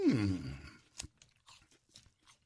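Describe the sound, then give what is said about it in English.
A crisp crunch of biting into a dense, round apple, followed by several moist, crunchy chews at a steady rhythm, with a brief murmured vocal sound at the start. “It's got a nice crunch.”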